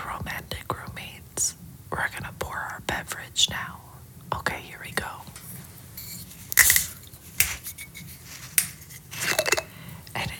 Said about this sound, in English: So today's beverage is Secco strawberry and raspberry, wine product, and it's gonna make a sound when I open the top.